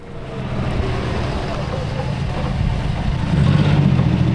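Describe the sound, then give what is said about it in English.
A car engine hums low and steady as it idles, with the rumble growing louder and fuller near the end as the car comes back. “Now let's hear the car come back.”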